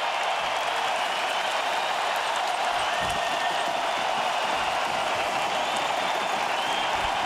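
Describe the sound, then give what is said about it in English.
An Edmonton Oilers hockey arena crowd on its feet cheers and applauds as the Oilers win 6-3 over the Colorado Avalanche after an empty-net goal, clinching a playoff spot; one sustained, loud, dense roar that holds steady for several seconds, with no clear voices rising above it. “Listen to the crowd. They are on their feet.”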